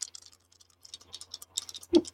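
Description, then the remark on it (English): Dice rolled for an agility and stealth check rattle and clatter in a rapid, irregular string of small, sharp clicks, ending with a louder knock as they land. Fairly quiet, with no talking. “The dice didn't want to cooperate. Do it better this time.”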